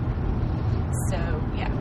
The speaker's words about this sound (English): We're driving through one of the nicer parts of L.A. And by nicer, I mean not. Well, we're right outside of Buena Park, so we're sort of by Anaheim.